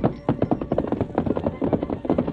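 Quick, steady hoofbeats of a fresh horse setting off at a gallop as a mail rider sets out on the return trip, a continuous drumming rhythm, moderately loud, with no voices over it.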